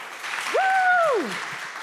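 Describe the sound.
An audience claps in a steady, dense wash that lasts the whole moment as a guest is welcomed to the stage, while one voice lets out a long, high whoop that swoops up, holds and slides back down.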